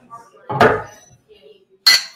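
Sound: beer glasses clinking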